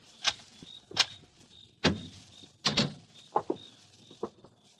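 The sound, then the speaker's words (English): A door being opened: several sharp clunks and rattles of the latch and handle, then a heavier thud or two as it swings, with no one speaking. “Now open the door”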